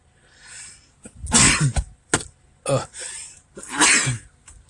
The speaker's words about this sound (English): Pardon my sneezing.